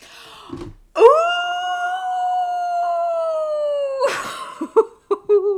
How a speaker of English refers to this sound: Ooh! What was that? A wolf.